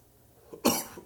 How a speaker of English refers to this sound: Okay, here's that a warning. No, no, that's coughing.